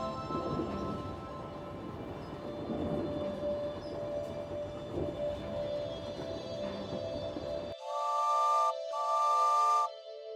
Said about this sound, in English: A loud whistle sounds as the train slows to a stop outside a white marble building.